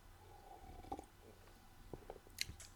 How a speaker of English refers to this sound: Okay, another little coffee sip coming in here.